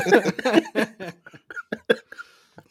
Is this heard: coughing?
yes